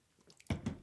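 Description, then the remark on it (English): Someone knocks back a shot of rye whiskey: faint wet sips, then a couple of loud gulping swallows in quick succession, with no talking. “This is a shot.”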